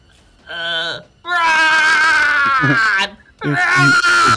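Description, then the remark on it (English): A person loudly imitates a shriek: a short high-pitched cry, then a long sustained wailing screech, followed by another strained burst. “What's my shriek sound like?”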